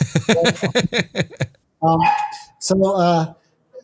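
A dog barks in a quick run of about eight sharp yaps, then lets out two longer, drawn-out whining barks after a short pause, fairly loud.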